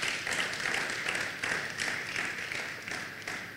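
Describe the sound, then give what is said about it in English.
A crowd claps steadily together for the Lord, a dense, continuous patter of many hands with no pauses and without any talking. “Give the Lord a mighty clap of him.”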